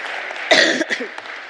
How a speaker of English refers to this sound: Round of applause for our marshals. Thank you very much.